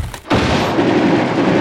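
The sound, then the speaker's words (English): A loud, dense burst of gunfire, starting after three men kicked in a door and went in, erupts after a brief pause, shots blurring together into a sustained crackling roar that continues to the end, with no voices. “Three guys came up, kicked in the door, and went in, and then shooting immediately started.”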